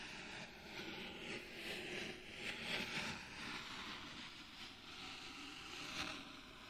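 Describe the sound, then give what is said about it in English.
A steady, gritty rushing of pebbles sliding through sand, swelling and easing in soft surges like waves washing ashore, with faint crisp clicks rising now and then. No one speaks. “The sound of it really does kind of sound like waves.”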